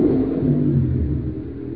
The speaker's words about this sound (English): You have all those motorcycles behind you.